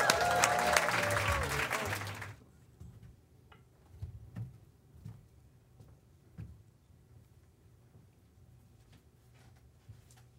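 A short, dense burst of audience applause for about two seconds, then it cuts off to near quiet with scattered soft clicks and taps.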